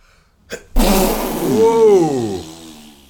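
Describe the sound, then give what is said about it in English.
A single loud sneeze: a quick sharp inhale, an explosive burst, then a drawn-out, wavering voiced tail that rises and falls in pitch before fading out. “Best thing about being my mate is I do fun sneezes.”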